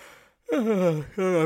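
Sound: yawn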